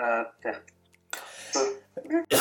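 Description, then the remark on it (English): Harsh, noisy bursts of coughing and throat clearing, fairly loud, mixed with short voiced sounds and ending on another abrupt rasp. “Oh, mate, I'm so glad because I needed to cough right. So bad.”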